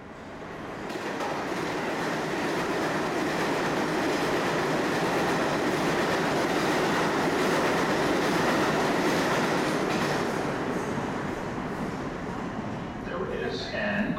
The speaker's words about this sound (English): Train 2, Van Cortlandt Park, 242nd Street, approaching the station. Please stand away from the platform edge.